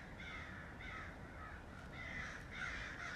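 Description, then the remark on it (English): About eight crows caw repeatedly in harsh, overlapping calls, a steady noisy chorus with no voices heard. “Yo, these crows are ruining this.”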